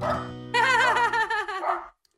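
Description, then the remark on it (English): A dog barks in one drawn-out, wavering vocal burst lasting over a second, fairly loud, starting over a low steady hum and trailing off at the end. “Is that your dog barking?”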